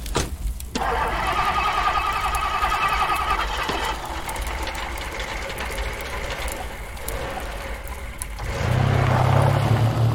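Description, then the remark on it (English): A car engine cranks and turns over, then settles into a steady running hum with mechanical rattling; a deeper rumble swells near the end. Fairly loud, with no voices. “Just get in the car.”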